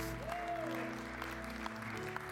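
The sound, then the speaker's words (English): An audience gives God a hand clap of praise, clapping steadily in a continuous wash of applause, with sustained organ-like chords and a brief rising-and-falling tone holding underneath throughout. “Can you give him a big hand clap of praise today?”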